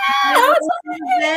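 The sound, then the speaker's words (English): A cat meows twice in quick succession, loud drawn-out cries with a bending, wavering pitch, the first rising then falling before the second follows. “Stop meowing.”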